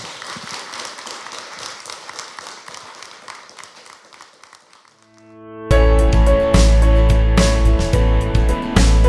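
A crowd claps steadily for about five seconds, the dense patter of applause gradually fading away before loud music abruptly starts and carries on to the end.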